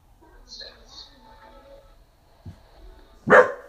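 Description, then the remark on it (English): A dog lets out a short, gruff growl that bursts into a sharp bark near the end, loud, after a quieter stretch with faint background voices; the dog is growling because somebody is approaching the door. “No, she's like, I guess somebody's approaching the door. So now she's like growling.”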